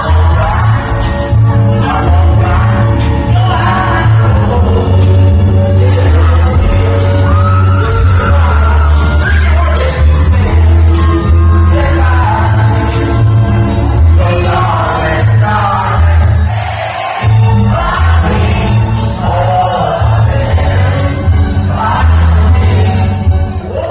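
A concert crowd at a rap performance sings along loudly over thumping, bass-heavy music during his last song, a tribute to his mother. A dense wall of massed voices carries on steadily with only a brief dip before swelling back.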